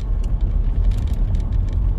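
Steady low rumble of road noise inside a moving car, a constant droning hum with faint higher hiss flickering on top, no voices present.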